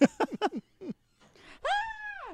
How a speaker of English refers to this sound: Screams like a little girl. He just explodes.